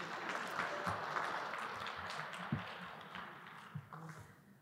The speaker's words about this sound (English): Let's give Ethan like a round of applause.